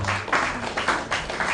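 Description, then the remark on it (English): Light, scattered clapping from a small group, a soft steady patter with a few slightly louder swells, fairly subdued and brief, with no voices over it. “I hear claps harder than that on a golf course somewhere.”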